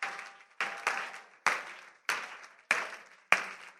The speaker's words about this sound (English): Go ahead and clap.